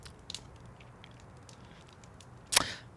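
A single hard, sharp sniff of a beer, a loud airy rush of breath near the end, preceded by a few faint breathy noises against a quiet hiss. No one speaks.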